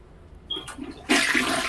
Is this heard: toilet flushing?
yes